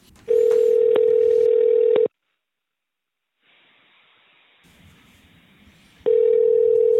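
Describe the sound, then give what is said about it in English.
A telephone call to Kinky Friedman rings on the line: a steady, loud ringback tone for about two seconds, a pause filled with faint line hiss, then the tone starts again. No one speaks. “Why don't we just give him a call?”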